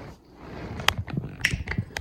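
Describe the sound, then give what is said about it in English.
A leather recliner creaks and clicks as it shifts: a few sharp, bright clicks at irregular intervals over low, grinding creaks, moderately loud with no talking. “So I'm sitting in a recliner chair, leather, which is that's what's going on right now with the.”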